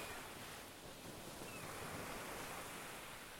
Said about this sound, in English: Listen to the sound of the waves. How long can you hear those waves go out? Listen to the sound of the waves crash on the beach.